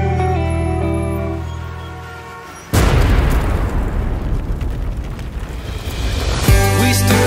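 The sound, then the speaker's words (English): A steady tonal hum gives way to a sudden loud explosion of a bomb dropped from a drone at about three seconds, followed by a long, dense rumbling roar that fades slightly before another burst near the end. “they'll drop a bomb from a drone, then an explosion.”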